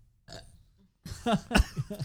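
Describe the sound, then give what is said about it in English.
A woman burps: a small, soft burp comes first, followed after a brief pause by a longer, louder, croaky belch with wavering pitch, with no talking. “Well, she burps like a lady.”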